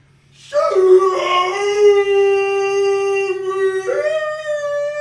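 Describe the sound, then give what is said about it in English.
A person imitates the bugle of an elk in heat: one loud, sustained high-pitched howling cry that holds for several seconds, briefly dips, then swells back up. “Bugling like an elk in heat.”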